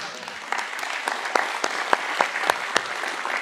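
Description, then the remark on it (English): A crowd applauds an announced baptism of people testifying to change in their lives, a dense wash of many hands clapping with a few sharper, louder claps standing out at irregular moments throughout. “If you just clap for that and you haven't publicly been baptized since you got saved or rededicated your life, thank you for signing up with that clap.”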